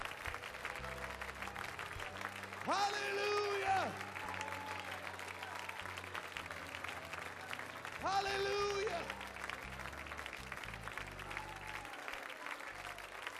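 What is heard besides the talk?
audience clapping hands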